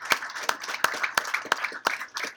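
Audience applause with a steady, rhythmic beat: sharp claps land roughly three times a second over a bright, busy wash of crowd noise, at moderate loudness, with no talking.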